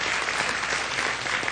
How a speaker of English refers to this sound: I want you to clap your hands and really appreciate your pastors for me. Thank you so much. Hallelujah.